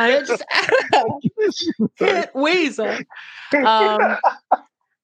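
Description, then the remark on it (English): Someone clears their throat close to the microphone, a rough, breathy rasp mixed in among bursts of voiced, speech-like sounds that stop abruptly near the end. “sorry, I keep clearing my throat right into the microphone.”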